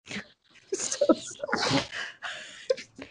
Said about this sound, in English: Three sneezes. I'm so sorry.